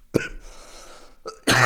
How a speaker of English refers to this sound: I'm coughing in the mic.